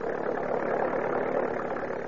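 A car engine idles steadily, a continuous low rumbling hum with a faint mid-range churn that holds an even loudness throughout, with no voices.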